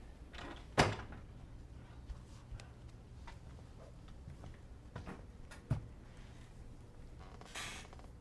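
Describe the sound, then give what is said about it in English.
A door swings shut with a solid thud near the start, followed by a softer knock a few seconds later, against a quiet room hum with faint creaks and shuffles. “Shut the door, will you?”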